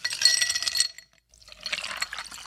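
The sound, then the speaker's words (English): Dunrobin Distillery Canadian rye whiskey poured into a glass in two short bursts, a splashing trickle with a brief pause between, moderately loud with no talking. “By the way, can I pour you a little holiday festive Dunrobin Distillery's Canadian Rye Whiskey?”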